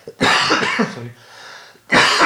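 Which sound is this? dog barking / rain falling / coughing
coughing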